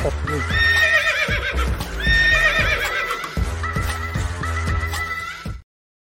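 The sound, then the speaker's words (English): A loud horse neighing in repeated whinnies over a steady clip-clop of hooves and a low rumbling bed, all layered together like a homemade produced transition sound effect that cuts off abruptly. “The Big Horses deep dive is coming up, and I made a transition for this one.”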